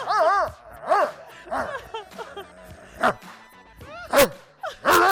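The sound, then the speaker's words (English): A dog barks and yips repeatedly in loud bursts roughly every second, with a few sharper, harsher barks standing out, part of a song being played. “And we don't want to hear all that barking. You know it's coming.”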